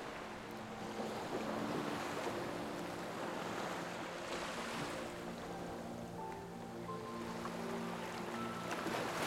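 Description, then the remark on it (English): Ocean waves wash steadily against a shoreline in a continuous, rushing hiss, with soft sustained musical tones drifting underneath and no voices. “Continue to stand on the shoreline, focusing on the sound of the waves as they come and go.”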